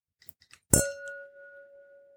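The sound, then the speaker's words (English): Two wine glasses meet in a single bright clink, preceded by a few soft taps, and the pure glassy tone rings on clearly for over a second as it slowly fades. “Cheers. Cheers.”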